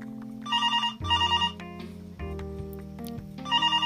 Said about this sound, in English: Mary Alice barely had our bags unpacked when the phone rang.